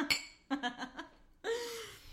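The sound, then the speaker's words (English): Glasses of straight bourbon clink together once in a toast, a bright ring. Short chuckles and breathy sounds follow. “we're drinking the most American drink there is, which is a straight up bourbon. Cheers.”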